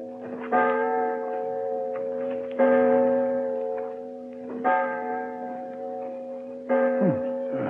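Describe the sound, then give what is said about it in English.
A clock strikes four slow, resonant chimes about two seconds apart, each ringing on and fading into the next, with faint ticking in between and no voices. “Clock, Holmes.”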